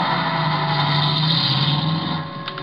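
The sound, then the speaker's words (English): A car engine hums steadily for a few seconds, then grows slightly quieter toward the end as the vehicle pulls away. No one speaks. “But when I peeked over the top of the stairs, he was in his car and going.”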